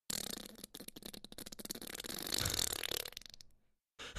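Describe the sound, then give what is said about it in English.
A person blows a long, wet mouth fart that imitates flatulence, a loud, sputtering raspberry that flutters for over three seconds before trailing off, then a brief burst at the very end. “Like a real wet pretty one. Pretty good drawn out one.”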